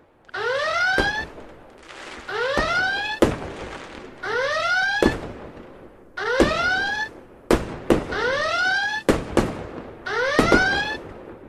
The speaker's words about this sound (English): Forewarning. The klaxons are blaring and the fireworks are going off.